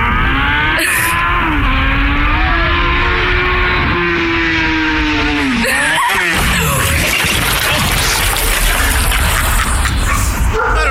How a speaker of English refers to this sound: And you'll hear the fucking motorcycle come off. You'll hear it. It's pretty loud. Here comes the motorcycle.